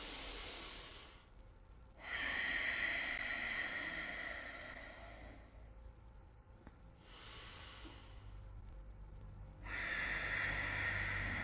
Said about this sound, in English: In through the nose, out through the nose with force. Gentle whisper of the chest and throat. Continue a few more rounds.